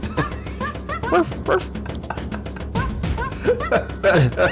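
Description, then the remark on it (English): Repeated dog-like barks and yips from the video game Donkey Kong 64, coming in quick irregular bursts over a dense, busy background of sound, fairly loud throughout. “Sounds like it's barking.”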